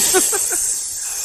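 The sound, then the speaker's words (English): A snake hisses in a steady, airy stream, joined early on by three quick, tonal chirps in a row before the hiss carries on alone. “And that tattoo on his fucking abdomen starts hissing every time somebody says his name.”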